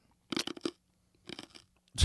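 Loud crunching of a hard throat lozenge, two short bursts of several sharp cracks each, with a third crunch starting at the end. No talking.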